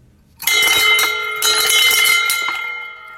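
A bell rings loudly, struck repeatedly in quick succession so its bright metallic tones overlap and sustain, then gradually fade. No one speaks.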